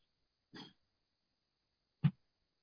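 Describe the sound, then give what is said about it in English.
Two short, muffled coughs separated by about a second and a half, the second one sharper and a bit louder, both fairly quiet with silence around them. “I heard him, I heard some coughing, so I thought it was him.”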